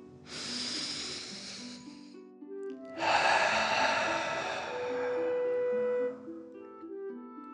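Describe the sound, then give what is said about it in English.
A slow, deep breath drawn in through the nose, a brief pause, then a longer, forceful exhale through the mouth as if breathing fire, airy, over a soft steady musical drone. “Breathe in through your nose and then out through your mouth, pretending you are breathing fire. Deep breath in and out.”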